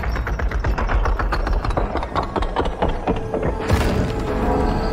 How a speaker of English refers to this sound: the dragon had just slid off stage and has knocked down one of the chains from the bridge. And so I'm going to start back up. Talk to me about this enormous chain coming down on him from a visual effects perspective.